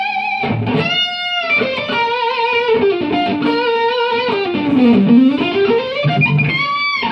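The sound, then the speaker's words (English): An overdriven electric guitar, played clean through a drive pedal set to full drive, plays a loud, continuous melodic lead, with sustained notes that bend and slide in pitch, thick with harmonics and gritty edge. No one speaks. “Great tone. That sounds so screaming. What is that? Is that your... you kind of going clean with a full drive?”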